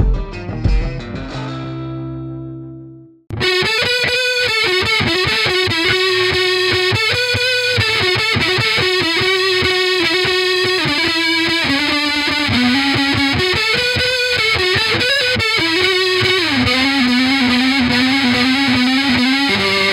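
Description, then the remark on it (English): A heavily distorted electric guitar strung with D'Addario XS Electric strings rings out a chord that fades, then after a short pause a loud, sustained overdriven guitar line plays continuously with wavering, bending notes. No voices. “XS Electric lets you bend further and play longer with a sound that stays timeless.”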